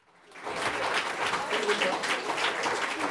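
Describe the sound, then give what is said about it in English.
A burst of applause, played as a sound effect during a live broadcast, swells in quickly and holds steady: dense, crackling clapping from a crowd, continuous for a few seconds. “Do you have some applause? I think I have some applause. Let me see if I can get it going.”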